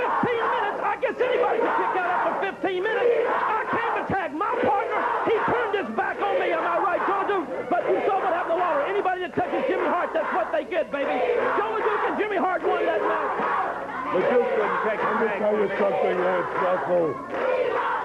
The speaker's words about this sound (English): And the crowd go bananas.